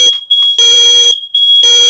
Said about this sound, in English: hang on, my smoke alarm's going off. Hang on, this is chaos.